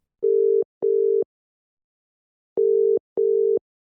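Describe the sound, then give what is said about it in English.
A telephone ringback tone purrs in the classic double-ring pattern, two short steady bursts, a pause, then two more, clear with no voices, as a call is placed to a writer in Jamaica. “and we'll see if we can get him on the phone now.”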